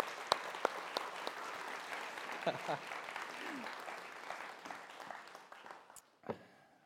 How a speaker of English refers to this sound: Can we give him some applause for just sharing?